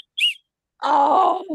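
A short, high whistle toot sounds once, then after a brief pause a longer, lower groaning tone follows, loud and wavering before it cuts off.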